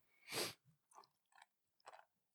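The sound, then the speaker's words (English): Crunching of a crispy snack: one loud, sharp bite followed by three quieter, irregular chews spaced about half a second apart, with no talking. “It's kind of crispy and crunchy like fish food.”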